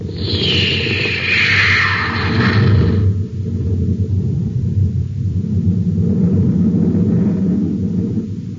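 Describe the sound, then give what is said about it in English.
The jets of the rocket ship Terra 5 fire at blast-off in a loud, continuous roar, with a hissing whine sliding downward in pitch over the first few seconds before a deep, steady rumble carries on. “Stand by for blast off. Close ports. Close ports. Fire jet. Fire jet. Up ship and away.”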